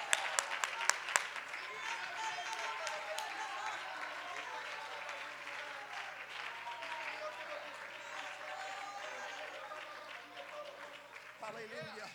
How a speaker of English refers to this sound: Oh, let's clap our hands and worship God.